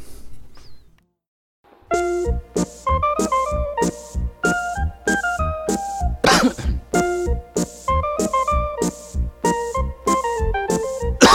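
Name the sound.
coughing and throat clearing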